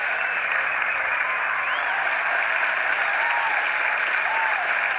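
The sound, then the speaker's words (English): Sustained, dense applause from an audience fills the whole stretch at a steady, fairly loud level, with a few faint whoops or cheers rising briefly above the clapping. “Oh, the audience loved that one. Just let them clap themselves out.”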